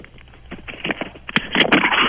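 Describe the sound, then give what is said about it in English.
A sheet of paper is handled, giving a run of crinkling and rustling with irregular crackles that start soft and grow louder and denser toward the end. No one speaks. “That's the piece of paper.”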